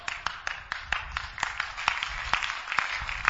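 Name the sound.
audience clapping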